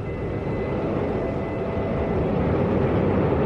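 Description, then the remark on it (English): A deep, continuous rumbling roar of rocket engines igniting at a crewed launch bound for the International Space Station, loud and steady throughout with heavy low-end thunder and a broad hiss on top, no voices present. “The engine's igniting.”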